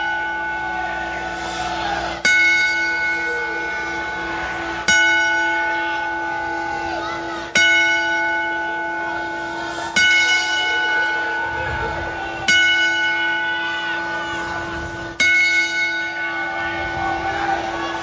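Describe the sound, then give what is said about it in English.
A bell tolls slowly and steadily in a ten-bell salute to Luke Perry and King Kong Bundy, struck about every two and a half seconds, each loud ringing strike sustaining and fading before the next, with no voices. “So again, sad news on both of them, and we take a moment to give a 10-bell salute to Luke Perry and King Kong Bundy.”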